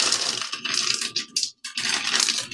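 A cup of chocolate chips is poured out, a steady gritty rattling hiss that briefly breaks off near the end before resuming, with no talking.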